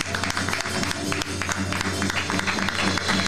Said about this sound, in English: Hand clap of praise, please.